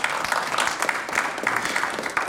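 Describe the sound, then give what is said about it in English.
Steady audience applause, a dense crackle of many hands clapping at once, sustained and fairly loud throughout with no voices standing out. “Yeah, thanks for applauding that one.”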